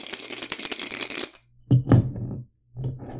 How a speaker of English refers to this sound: We're going to do three rolls of the dice.